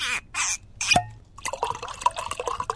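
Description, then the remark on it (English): A cocktail is poured into a glass: a few short splashy bursts and a bright drip, then a steady, bubbling pour that keeps going to the end. “Cocktail? I would love one.”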